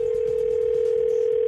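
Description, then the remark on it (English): A telephone line hums with a steady, unbroken mid-pitched dial tone as a call is placed for the Froggy phone tap prank call, loud and constant for the whole moment, with no voices or other sounds. “All right, let's see what happens in today's Froggy phone tap.”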